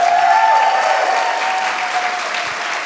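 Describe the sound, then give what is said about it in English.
An audience at a Minnesota Humanity Center event applauds a singer steadily and loudly for the full three seconds, a dense wash of clapping that eases only slightly toward the end, with a faint sustained tone running beneath it. “Can we hear it one more time for Ms.”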